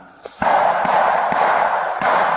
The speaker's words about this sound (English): As they continue their patrol, four distinct shots are heard. Listen.